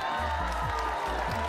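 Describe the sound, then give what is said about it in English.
A steady wash of applause fills the whole moment, a dense, even patter of clapping with a low, droning hum underneath and no voices breaking through. “I mean, we give you a round of applause for that.”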